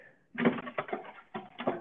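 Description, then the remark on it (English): Silverware being put away: a run of clattering, clinking metal utensils in several irregular bursts, bright and moderately loud, with no talking. “What are you putting silverware away?”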